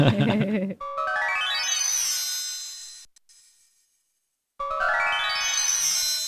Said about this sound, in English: But it's quite irregular. Can we hear the bell tree?